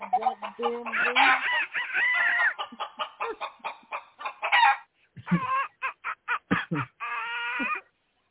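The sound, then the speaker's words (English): A Norristown chicken pecking at someone clucks busily in quick, rhythmic bursts, with harmonic squawks and drawn-out calls that rise like crowing, loud throughout with brief pauses between bursts. “Get your damn chicken off of me right now.”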